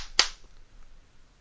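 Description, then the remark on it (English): A single sharp hand clap, a quick bright smack that dies away at once, followed by near silence with no talking. “I don't have any of my soundboard working at the moment, so I had to do my own clapping, but that's it.”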